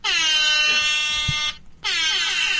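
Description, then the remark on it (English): An air horn blares in two long, loud blasts, the first lasting about a second and a half, then a short pause before the second sounds, with no voices. “Oh, it's an air horn.”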